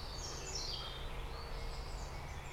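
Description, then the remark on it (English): Faint, high robin song trills and warbles in thin phrases in a woodland over a steady low rumble of road traffic, with no one speaking. “I can hear robins, mostly.”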